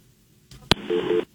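A sharp click followed by a brief burst of electronic phone-line tones with two short beeps, like a caller dropping off the line. No one speaks.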